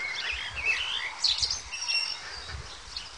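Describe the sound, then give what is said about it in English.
Several birds sing and chirp together outdoors on a beautiful evening, heard while walking home along a scenic route: a continuous layered chorus of high, bright calls with a soft low rumble of background ambience and no talking. “Can you hear those birds? Have a listen.”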